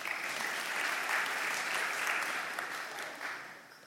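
A crowd claps steadily in a dense, even patter of many hands, holding at a moderate level before gradually thinning and fading toward the end. No one speaks over it.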